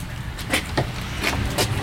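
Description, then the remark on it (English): A door being opened: a handful of short clicks and clunks spread over two seconds, set against a steady low rumble, with no one speaking. “Here, I'll get the door.”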